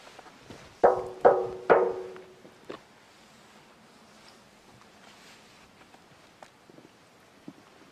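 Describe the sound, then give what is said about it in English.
Three loud knocks on the metal part of the bridge of a rebooting device, in quick succession, each with a short ringing, resonant tone, followed by a single softer tap and then quiet background with faint clicks. “Oh, knock on the metal part.”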